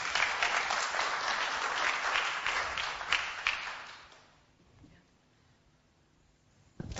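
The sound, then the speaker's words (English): A crowd at a cookery demonstration applauds a volunteer from the audience with dense, steady clapping for about four seconds, then the applause fades out into near quiet, with a brief sharp sound at the very end. “Round of applause for the lady.”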